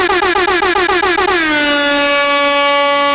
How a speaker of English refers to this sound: All those who are about that grind life, let me hear them air horns.